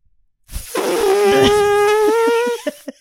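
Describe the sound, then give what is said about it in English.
A woman imitates an elephant's trumpet with one loud, buzzy, sustained call lasting about two seconds, followed by a couple of short breathy bursts. “But apparently, if you sound like an elephant, you're going to impress your friends.”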